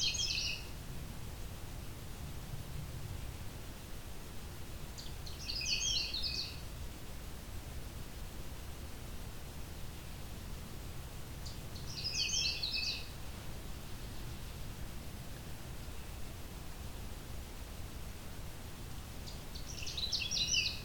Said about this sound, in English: Okay, we got a Canada warbler just up ahead.